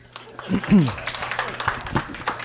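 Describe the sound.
A voice speaks briefly, then an audience breaks into scattered, irregular clapping at a moderate level, with talk murmuring underneath.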